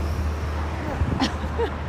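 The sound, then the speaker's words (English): A bus driving past, its engine rumbling steadily in a deep continuous drone with road noise, while a faint voice briefly murmurs over it. “And there was another bus.”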